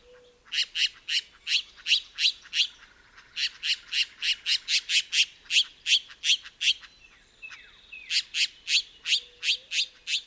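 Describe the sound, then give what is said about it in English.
A Mexican jay calls from a perch: a long, steady series of loud, harsh, raucous squawking notes repeated in quick rhythm, with one brief pause before the scratchy calls resume. No voices are heard. “Ranging from Central America northward to western Texas, New Mexico, and Arizona, the Mexican jay lives in social groups where non-breeding individuals may help feed the young of breeding pairs.”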